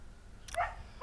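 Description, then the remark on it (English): A lurcher Bedlington cross dog gives a single sharp bark, then a second bark starts just as the sound ends. Both are fairly quiet over a low background hum, with no talking. “you can probably hear Wolf barking”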